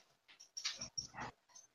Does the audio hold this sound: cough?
no